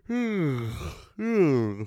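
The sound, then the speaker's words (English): A voice imitates the obnoxious, exaggerated, loud yawning of a man on a train: two drawn-out, groaning vocal sweeps that slide downward in pitch, prominent, with a short break between them. “The guy on the train audibly and exaggerating his yawns the whole fucking ride.”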